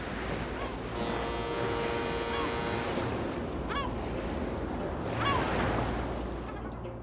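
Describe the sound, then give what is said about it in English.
Ocean waves wash steadily onto a shore in Morocco, northwestern Africa, overlooking the Mediterranean and the Atlantic Ocean, in a continuous broad roar, swelling louder near the end, with a few faint bird cries and no voices. “Overlooking the Mediterranean and the Atlantic Ocean.”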